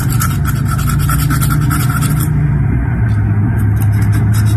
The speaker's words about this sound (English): This is a new trend on TikTok. People are nail filing their teeth. Their teeth, yeah. To actually get straighter teeth, they're taking a nail file and...